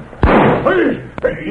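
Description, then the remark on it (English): A loud, sharp gunshot fired at a piano player's feet in a cafe to make him play cracks out, followed by a rough, noisy tail with a brief voice-like cry over it, then a second, fainter snap near the end. “What a shot at his feet, Jake. That'll make him play.”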